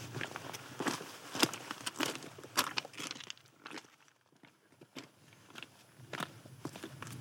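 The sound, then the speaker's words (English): Footsteps crunching and scuffing up a rocky mountain path near Goat Crags and Hollowstones, an irregular trudging rhythm of gritty steps that eases off briefly midway before resuming, with no talking. “Anyways, we'll plod on up.”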